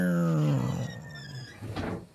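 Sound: dog growling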